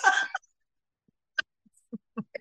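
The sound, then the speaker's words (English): A harsh cough bursts out, then after a pause come several short, quieter coughs and throat sounds in an uneven string, with no talking. “Don't make me laugh. It's like, cough my chest out.”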